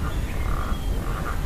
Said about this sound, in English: Can we hear the frogs? Never heard them before in 25 years of being here.